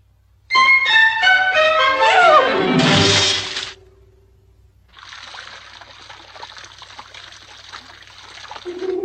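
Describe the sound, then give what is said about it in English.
In a scene from the film Dumbo, a run of bright musical tones slides downward and stops, then after a short pause a steady, soft trickle of water fizzes along on its own until the end. “What kind of water is this, anyhow?”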